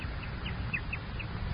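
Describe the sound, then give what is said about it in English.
A bird calls over and over in short, bright bursts, about half a dozen in quick succession, set against a steady low rumble like wind. “Only the birds make their home with me.”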